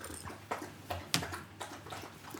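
A dog named Winnie laps water from her bowl, a series of quick wet slurps in an irregular rhythm with soft splashy clicks, quiet but clear.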